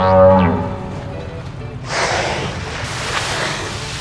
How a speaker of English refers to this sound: Looks like that whale is saying thank you, too. Actually, she's politely asking us to leave so she can feed her baby.